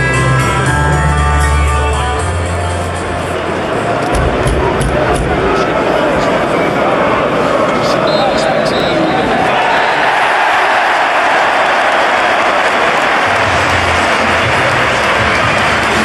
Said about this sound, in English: There it is, that is the noise just after the full time whistle as Newcastle United reach their first cup semi final since 2005.